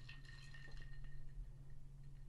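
A glass bottle of Kavalan whisky clinks a few times near the start as it is brought out, bright ringing tones that fade over about a second, with a steady low hum underneath and no voices.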